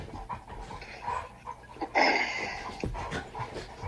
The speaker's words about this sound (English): The dogs are fighting. The dogs are? Yeah, they're just playing. They're playing something. Ignore them. They do that a lot.